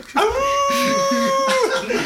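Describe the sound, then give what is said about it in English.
A person lets out a loud, sustained wolf-like howl, holding a steady pitch for over a second before it drops off at the end, with faint voices murmuring underneath. “These dogs. These wolves.”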